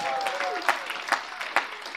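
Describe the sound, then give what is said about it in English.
An audience claps steadily in a dense wash of applause for reaching the season finale of the By Faith Alone series, with a few sharper, louder claps standing out at a regular beat. A brief high whistle-like tone fades early on. “So clap your hands because you made it to the season finale.”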